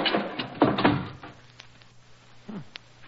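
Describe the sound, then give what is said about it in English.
A heavy sticking door with a rusty hinge is pushed shut by two people: it scrapes and grinds with a couple of dull thuds, followed by a low, drawn-out creak and a final groaning scrape, fairly loud. “Hurry, help me close the door before the archway falls on us.”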